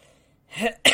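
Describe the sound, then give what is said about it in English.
A person coughs: a short, throaty rasp followed by a sharp, loud, bursting cough at the end, with no talking. “Pardon me, sorry, I keep coughing, just not a good day for that.”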